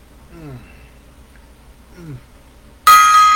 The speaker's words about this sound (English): Another gong solo there.